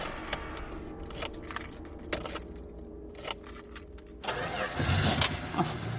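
Keys clink and scrape as shaking hands take several tries to get them into a car ignition in a parking lot, with several sharp metallic clicks, then the engine cranks and turns over, settling into a loud rumble in the final seconds.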